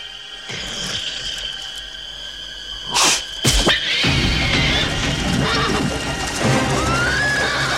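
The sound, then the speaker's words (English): A shrill, distorted horse-like whinny of a frightened unicorn in a film, eerie and manipulated, with sustained high wavering cries and a sudden loud burst midway, with no talking. “It's like this terrible whinny that I'm sure they manipulated sound-wise.”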